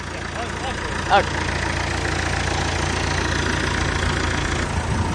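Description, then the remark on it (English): A truck engine idles steadily, a continuous low rumble with a broad mechanical hum that stays even throughout, broken only by a brief sharper sound near the start. “I know you want me to climb up into that truck, don't you? Okay, I'm willing. It's going to be noisy here.”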